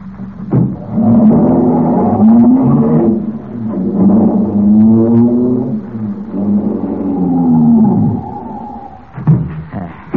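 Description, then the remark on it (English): A car engine starts up and revs, its droning pitch rising and falling steadily for several seconds as it pulls away to drive a short distance down the street, loud, then a few brief knocks at the end. “I'll take the car, drive a short distance down the street, then leave it and make for the ranch.”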